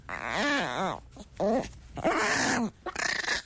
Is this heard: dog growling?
yes